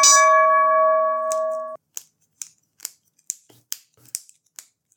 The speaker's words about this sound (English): No, sorry, I'm clicking the pen already, mate.